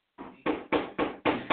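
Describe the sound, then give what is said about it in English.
A rapid series of about six firm knocks on a door, evenly spaced and fairly loud, each with a short booming ring. No one speaks. “I'm knocking at this door.”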